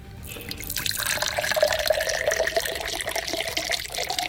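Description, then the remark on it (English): Liquid pours steadily into a glass in a contest to fill it close to the rim without overspilling, a continuous splashing, gurgling stream with a slowly rising tone as the glass fills, fairly loud, with no voices. “OK, I shall commence the pouring.”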